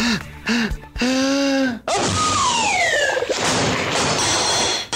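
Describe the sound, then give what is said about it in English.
A very loud, exaggerated sneeze: a few short tonal breaths build up, then a long explosive burst of noisy air streaked with sliding whistle-like tones, with no talking. “Although not many people sneeze quite that loudly, there are lots of other types of allergies, like certain foods such as eggs and milk.”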